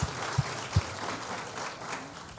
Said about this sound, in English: Well, seriously, thank you so much for sharing. Yeah, a round of applause here, everyone. Thank you.